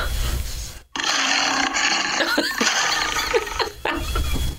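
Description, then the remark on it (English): A person imitates the MGM lion roar with their own voice: a loud, raspy, gravelly growl sustained for several seconds, broken by two brief pauses for breath. “I'm actually going to do it with my own voice.”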